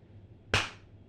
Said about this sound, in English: Clap. All right, we should be good.